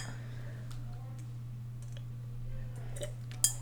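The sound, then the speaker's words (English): Wine glasses clink once in a toast, a single bright ring near the end, preceded by faint scattered ticks over a steady low electrical hum. “I poured you wine, by the way. Yeah. Oh, thanks. You didn't tell me. Cheers.”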